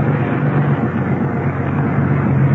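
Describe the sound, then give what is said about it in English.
A car engine rumbles steadily with a low hum, holding an even, fairly loud level throughout as it runs through, with no voices. “Send the first car through.”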